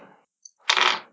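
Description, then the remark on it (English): Two dice clatter and tumble across a hard surface: a short rattle, a single sharp click, then a louder, longer burst of rolling and knocking that fades out. “Wait, I just rolled two dice.”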